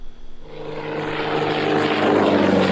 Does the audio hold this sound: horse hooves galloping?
no